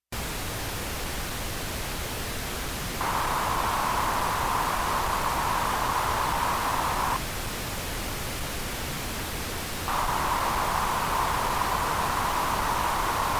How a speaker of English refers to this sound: Honky is, I like to think of as like a nasally, like a really nasally voice, right? Mm-hmm. Is how I think of it. So I think of like a guitar that's playing through its nose. I think of as honky. And here's what that sounds like with the pink noise.